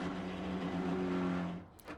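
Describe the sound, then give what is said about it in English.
A loud, rough engine drone of a broken-down bus grinds steadily for about a second and a half, then sputters and cuts out, followed by a brief hissing wheeze, as the bus engine struggles to run. “This is a bus that's not working.”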